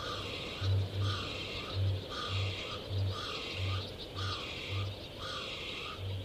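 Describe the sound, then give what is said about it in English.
A kākāpō, a night parrot, gives a series of deep, resonant booms, repeated in a steady rhythm about twice a second over a dense night chorus of chirping insects or frogs. “Voice of the Kākāpō 1: Kākāpō - night parrot”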